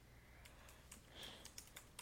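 Quick, irregular clicks of keys being tapped on a computer keyboard while typing notes, fairly quiet, with a slightly louder burst of keystrokes toward the end and no voices.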